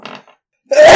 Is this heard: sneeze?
yes